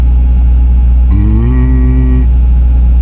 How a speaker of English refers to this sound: oh, we've stopped rolling. We're coming to a halt somewhere at the moment. So the only two sounds now, the sound of the traffic is gone. Instead, you've got the generator. Listen.